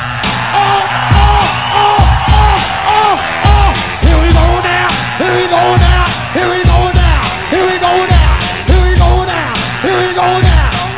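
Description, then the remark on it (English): A loud crowd cheers, whoops and yells continuously, with high shouts rising above the roar. Heavy rhythmic thumps pulse underneath throughout. “At the count of three, I want everybody in the place to be to make some noise if you're down with me.”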